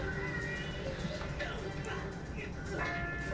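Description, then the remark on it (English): A bell rings with steady, lingering metallic tones that hold throughout, moderately loud, with faint voice-like sounds and background noise mixed underneath. “How the heck did it make that bell sound?”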